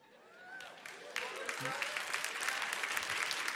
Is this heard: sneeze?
no